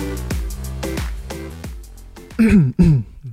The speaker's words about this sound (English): He clears his throat every second.